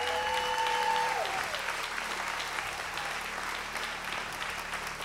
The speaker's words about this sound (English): Can we just give these guys some applause?